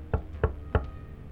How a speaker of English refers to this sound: Well, even if they did knock, it wouldn't be like that.